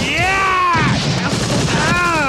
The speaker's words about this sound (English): I opened fire on the door. It said occupied.